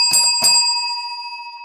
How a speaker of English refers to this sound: we don't ring the bell enough anymore. Ring the bell for me one more time if you have it there right by your side.